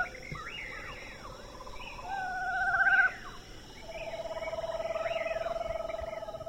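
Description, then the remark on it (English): A screech owl in Parks, Texas gives a descending whinny followed by a long, steady tremolo trill over a background of other chirping birds and faint insect buzz. “Four, Winnies and Trills with Parks, TX. So these are more Winnies of this screech owl.”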